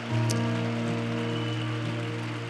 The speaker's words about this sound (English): Come on, can we give a hand clap of praise to the Lord right now? Thank you, Lord.